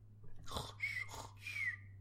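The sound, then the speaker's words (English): Breathy exhales carry two thin, high whistling tones, each lasting a fraction of a second, fairly quiet over a low steady hum, with no talking. “Yeah, it was a weird little whistle thing that you...”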